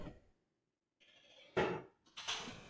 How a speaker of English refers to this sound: I just spilled tea all over my keyboard, but it is what it is.